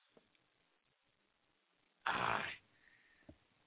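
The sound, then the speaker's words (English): A person makes one loud, harsh vocal burst imitating a dog's bark, lasting about half a second, forceful against an otherwise quiet background with a couple of faint clicks. “Do the dog bark.”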